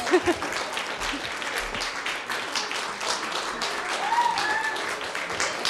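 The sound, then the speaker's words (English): A crowd applauds steadily for a speaker being introduced at an evening talk, dense overlapping claps filling the whole stretch at an even, moderately loud level, with a few faint voices and a brief whistle-like tone near the end. “Everyone, clap for her.”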